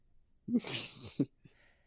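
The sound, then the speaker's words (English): A single exaggerated sneeze, voiced by a person mimicking the sound: a short vocal onset, a loud breathy burst, then a clipped ending, fairly loud, followed by quiet. “Achoo.”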